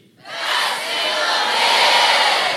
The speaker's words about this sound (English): It's funny that you guys yell your names louder than Best in the Biz. Of course. I would too. But also, when was the last time you yelled your own name? It's super weird.